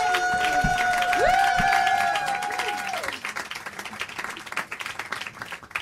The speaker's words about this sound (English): Start clapping right now really big and loud. Go, woo, woo, woo.